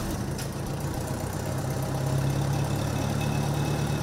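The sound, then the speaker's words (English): The engine of a 1974 Oliver 550 tractor with about 4,000 hours on it idles steadily, a loud, even low rumble with a constant throb that holds for the whole stretch, and no voices are heard. “We're gonna check out a 550 that's still got some life left.”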